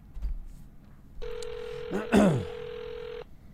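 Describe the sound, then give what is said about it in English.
A single steady ringback tone of about two seconds, heard over a phone line as an outgoing call rings, with a brief voice cutting in near the middle. “I think it's ringing.”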